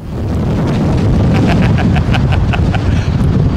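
A plane landing in strong wind: a steady, heavy low roar of gusting wind buffets throughout, with a faint series of rhythmic, higher tonal pulses emerging midway.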